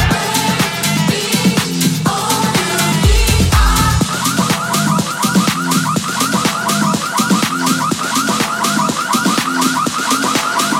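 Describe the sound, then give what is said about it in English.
A car alarm blares a rapid, repeating warbling tone that cycles steadily, mixed into loud pounding dance music with a driving beat from a DJ set at a pool party. No one speaks. “Everybody press their button and let that car go.”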